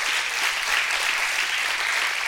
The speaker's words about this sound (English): You remember? Clap your hands if you remember. Clap your hands.